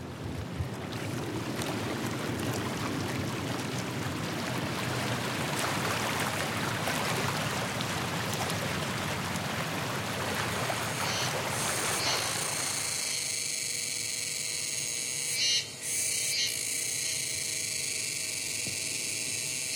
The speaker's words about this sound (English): do you know what kind of bug this is? Yeah, I know, but I don't know how to say it. Yeah. It's so loud. It is.